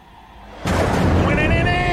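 A thunderclap sound effect: a brief quiet lead-in, then one sudden loud crack that rolls on into a sustained, roaring rumble to the end.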